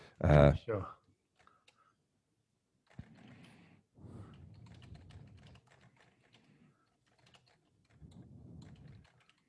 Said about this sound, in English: I like hearing just about hearing your keys tapping away.